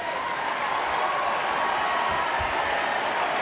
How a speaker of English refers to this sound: Now at this point, and we'll play, continue with the audio, the entire crowd starts to cheer and they all stand, giving him a standing ovation to what the Admiral said, including about 10 other senior commanders, all in their navy white formal